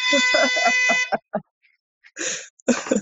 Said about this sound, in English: My husband's alarm yet again. Like I said, it's enough to, like, you know, wake the dead person.